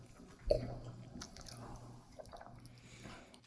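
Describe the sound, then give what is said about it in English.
Quiet mouth sounds of people sipping 110-proof bourbon whiskey: a soft wet slurp near the start, then faint smacking and liquid swallowing noises, with no talking. “Actually, let's sip it.”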